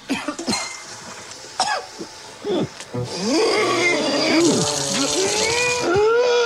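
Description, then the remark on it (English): Someone coughs and chokes after food gets caught in the throat: a few sharp, rasping coughs, then a long stretch of strained, wheezy hacking with rising and falling voiced gasps, loud and continuous to the end. “Oh, is that you coughing?”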